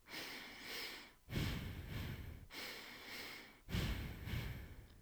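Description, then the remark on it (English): Audible breathing in four distinct breaths, two quick inhales then two exhales, each a breathy rush separated by short pauses, with no talking, performed as a double-inhale, double-exhale breathing exercise. “Or if you don't like holding your breath, try it like this. In, in, out, out. In, out, out.”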